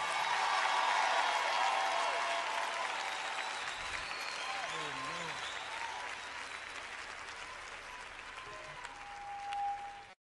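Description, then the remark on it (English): An audience claps steadily for about ten seconds for Bishop Charles Ellis before the next song is sung, a dense wash of many hands that starts loud and eases slightly, with a few whoops and voices rising through it. “Before we sing the next song, would you clap your hands for Bishop Charles Ellis?”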